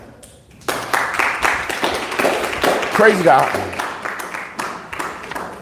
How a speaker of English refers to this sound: I'm glad you guys are clapping